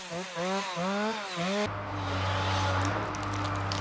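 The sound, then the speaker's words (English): A chainsaw used for hand-cutting timber in a forest run by the Laggan Forest Trust revs in rising and falling bursts, then settles into a steady, loud drone as it bites into wood, with no voices. “The initial five-year partnership agreement between Laggan Forest Trust and the Forestry Commission was based essentially on the original aims of creating labour-intensive forest jobs for local people using chainsaws, or hand-cutting as it's known.”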